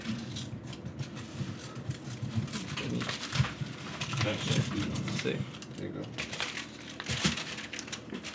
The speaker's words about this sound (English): No, rip a piece of the paper, yeah, sure. Not the money. How much should I rip off?